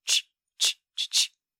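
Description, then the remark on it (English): A voice makes four breathy "ch" sounds with the mouth, short hissy bursts with a slight pause after the first two and the last two coming quickly together. “And the third ingredient will be using our mouths to go”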